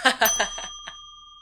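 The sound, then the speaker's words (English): A single bright ding of a desk bell rings out and lingers, its metallic tone slowly fading, while laughter and voices chatter briefly over the start of the ring. “Okay, so I ring the bell. You're gonna ding the bell.”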